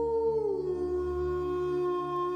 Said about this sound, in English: A huge fang-filled mouth, a horrible mixture of human and dog, would stretch and let out its fearful howl when it hunted.